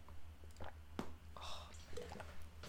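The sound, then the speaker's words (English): Someone sips water from a bottle, with soft wet mouth sounds, a couple of quiet gulps and a small click, all faint with no talking. “I'm just going to have a bit of water first.”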